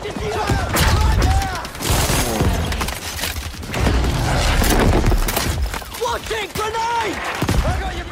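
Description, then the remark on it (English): Chaotic battle in the video game Battlefield 5: rapid bursts of gunfire crackle over deep booming explosions, with soldiers' shouting voices rising through the din. The dense, loud barrage never lets up. “For example, in Battlefield 5, there might be planes overhead, and soldiers shouting, and bullets flying from every direction.”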